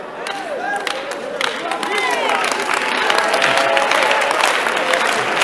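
An audience claps in a dense, steady patter that swells slightly after the first couple of seconds, with scattered whoops and rising and falling cheers mixed in throughout.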